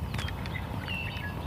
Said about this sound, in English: Oh, it might be a blackbird.